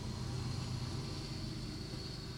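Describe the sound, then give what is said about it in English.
A passing train produces a continuous low, grinding rumble with a faint higher hum on top, holding a steady, fairly quiet level the whole time with no voices. “See who is in The Holiday as the train's going by.”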